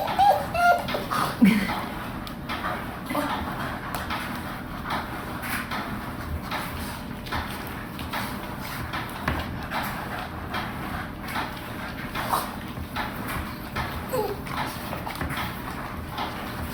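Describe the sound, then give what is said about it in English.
A Boston Terrier dog licks a cabinet door: steady, repetitive wet lapping and smacking that keeps going without pause, with faint knocks against the wood and no talking. “You know why he's licking that door?”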